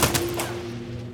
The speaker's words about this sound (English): Thunderous gunfire is heard miles away. The stricken Ford begins to roll away towards the side of the road. The fusillade of gunfire follows it.